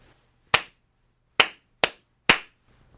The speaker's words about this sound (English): I'm going to have two recordings, and I'm going to sync them up by doing a clap here.